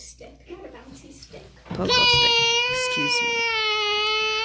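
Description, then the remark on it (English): After a moment of soft talking, a voice lets out a long, loud, strained roar imitating a dinosaur. It is sustained and high-pitched, holding steady for over two seconds. “Roar.”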